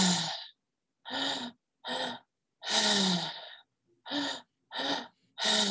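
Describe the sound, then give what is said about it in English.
Audible breathing in a steady circular rhythm: two quick, sharp inhales through the mouth, into the lower belly and then the high chest, followed by one longer, drawn-out exhale through the mouth, repeated without pauses. No one speaks. “So you're breathing in from your lower belly, from the mouth, in from the high chest, from your heart, again from your mouth, and then exhaling through your mouth in a nice circular rhythm. So it's breathing in, breathing in, breathing out.”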